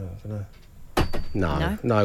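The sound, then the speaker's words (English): A studio door shuts with a single solid thump about halfway through, loud, as a contestant leaves the studio, while voices talk before and after it. “Let's see if he closes the door quietly.”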